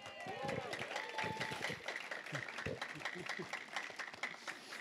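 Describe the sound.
A church crowd claps steadily for about five seconds as a guest speaker is introduced, a dense, fairly loud patter of many hands, with scattered voices and a few whoops rising over the applause.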